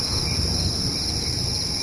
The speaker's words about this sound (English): Did I hear crickets? I think you did. What the fuck was that? That sounded like... I have no idea. That sounded like... Like a recording.